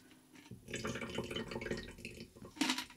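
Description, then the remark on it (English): Water splashes and gurgles steadily as it's poured out of a container into a can while making a tequila cocktail, a continuous stream lasting a couple of seconds with a louder slosh near the end. “First thing I'm going to do is pour the water out of this into this can.”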